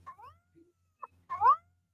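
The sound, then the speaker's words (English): A cat meows twice, a short mew followed by a louder, drawn-out meow, with a faint brief chirp between them, and no talking. “She's nice, sweet, kind, and cuddly, and all that good stuff. Or at least her. Hey, you, Big Purr.”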